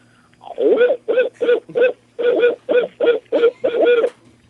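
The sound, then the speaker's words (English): A person imitates an owl with a quick run of about nine loud, breathy hoots in a steady rhythm, with no other talking. “All right, this is an owl.”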